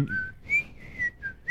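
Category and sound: human body sound, person whistling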